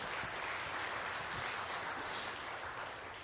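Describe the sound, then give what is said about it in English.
An audience applauds steadily for a group of people being introduced, a dense crackle of many hands clapping at once, holding a fairly even loudness for the whole stretch with no voices standing out. “Y'all clap for them. Yeah, we need some applause.”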